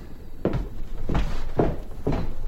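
Four dull wooden thuds spaced about half a second apart, like a house's door being pushed shut from inside and knocking against its frame, over a steady low background hum, with no voices.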